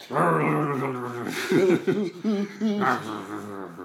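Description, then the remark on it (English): Loud, continuous snarling and growling like dogs in a scuffle, rising and falling in pitch with short yelping bursts, apparently produced by human voices imitating the fight. “You dogs, break it up now.”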